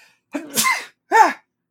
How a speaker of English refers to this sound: oh, I got to sneeze.